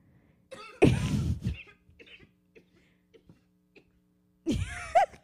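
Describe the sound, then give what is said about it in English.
Two loud, harsh bursts of coughing and sneezing, one early and one near the end, separated by a few seconds of quiet with only faint clicks and a low steady hum. “Dude, yeah, I started coughing and then I sneezed.”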